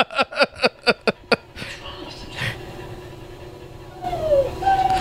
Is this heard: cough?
no